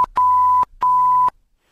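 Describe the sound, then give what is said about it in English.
A censor bleep sounds twice over a caller's phone number: two loud, steady electronic tones, each about half a second long, separated by a brief pause, with no voices heard. “We'll beep that.”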